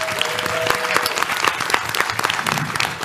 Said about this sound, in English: Round of applause.